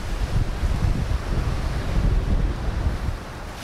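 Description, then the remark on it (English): Steady sea breeze buffets a microphone by the shore along a corniche, with a constant low rumble and the wash of surf underneath, loud with no voices. “I walk in the sea breeze, and I walk through puddles of shattered glass.”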